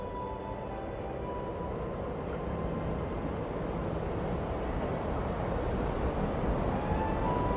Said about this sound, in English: She is awakened deep in fear. At the slightest sound of the wind howling around.